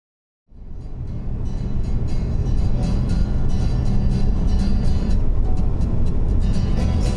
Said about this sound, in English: Now I'm on my way home in Gillette. On the road with more trucks periodically pulling off into one coal mine here, another there.